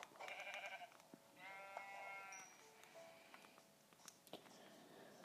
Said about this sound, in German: Ah, hier sind nochmal zwei Schafe. Gut für uns.